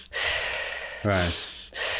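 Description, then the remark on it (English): Audible breaths: a long airy inhale, then a brief throaty, voiced sound and a rushing exhale, as someone draws air in through the nose and blows it out the mouth. “And then before you get to mouth breathing, there's this bridge that no one really does, is that nose in, mouth out.”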